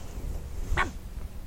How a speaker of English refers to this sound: So, Guppy the puppy stands in the threshold of the door, won't let you shut it, and barks.